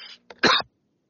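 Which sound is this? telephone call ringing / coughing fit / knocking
coughing fit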